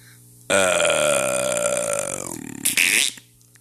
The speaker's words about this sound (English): why'd you fart, bro? I didn't, dude. I didn't do it. Maybe I did. Maybe I did. Maybe I didn't. You tell me. Did I fart or did I not fart?